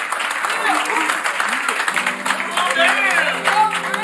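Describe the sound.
A crowd applauding loudly and steadily for about four seconds, a dense wash of claps with excited shouting and cheering voices rising over it in the second half.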